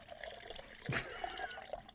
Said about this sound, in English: It's been a while since we've started an episode with a water pour. I meant to open it this way, yeah. But then I didn't have the water in my hands fast enough.